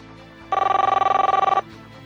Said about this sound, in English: The phone rings, a harsh sound that shatters the quiet, and after what feels like an eternity, a man picks up.